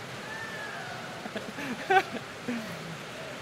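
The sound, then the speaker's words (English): Heavy rain pours down in a steady, dense hiss that fills the whole clip, with faint, indistinct voices murmuring underneath and a few brief louder splashes midway. “Jesus, what a beautiful thing it is to be able to come here and just to hear something as noisy as the rain like that, and then to hear it calm and to slow.”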